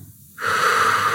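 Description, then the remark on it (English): A deep, drawn-out inhale into the lower belly, done as a breathing exercise, begins after a brief quiet moment and continues steadily to the end, an airy breath with a slightly wheezy, rushing texture. “So really inhale, feel that lower belly with air.”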